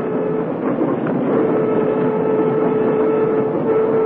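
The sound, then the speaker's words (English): A commuter train rolls steadily along the rails, a loud, continuous rumble with faint rhythmic clatter and a thin metallic whine running through it; no voices. “Why, I knew all about the Orient Express, but a commuter train?”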